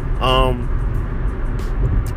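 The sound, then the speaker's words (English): Steady low rumble of a car cabin on the move, a constant engine and road drone filling the background, with a brief burst of a man's voice near the start; the car is headed to the airport. “So look, this is this show's a little bit unorthodox in the sense that, well, I'm in the car.”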